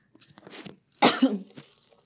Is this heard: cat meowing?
no